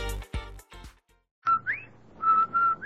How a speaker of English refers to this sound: Did I hear what? That whistle. That's a Rinso White whistle.